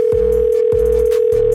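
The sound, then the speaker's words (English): A steady telephone dial tone, heard while calling in the next guest, hums at a constant pitch, joined by low rhythmic thumps that repeat about three times, with no voices present. “Okay, it's time to call in our next guest.”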